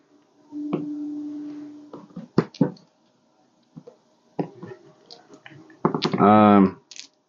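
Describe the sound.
Small hard objects clatter and click against a surface in a few short bursts as dice are handled and rolled, with some murmured voice sounds in between; the dice are a splat die, two shoot dice and a move die.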